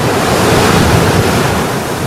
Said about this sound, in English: I'm standing here on top of Pillar Point. Behind me, Mavericks is breaking, 30-foot waves.